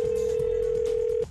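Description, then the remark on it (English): A phone line's ringing tone sounds once as a prank call connects: a single steady electronic hum lasting just over a second, clear, then cutting off abruptly. No one speaks. “So I call him back as the management office, you know, like I do.”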